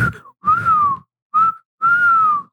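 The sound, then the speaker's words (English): A person whistles in three short, wavering bursts, each a steady mid-pitched tone that dips slightly at the end, a human attempt at imitating a turkey vulture's call, fairly loud. “I was like, why was I trying to whistle a turkey vulture?”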